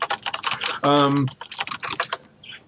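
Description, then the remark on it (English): Rapid typing on a non-mechanical rubber-dome computer keyboard without anti-ghosting, a soft, steady patter of keystrokes that runs throughout, briefly overlapped by a short voiced hum near the start. “Although it was not mechanical, this keyboard, it had the rubber domes underneath, and it also had the unfortunate crippling disadvantage of not having...”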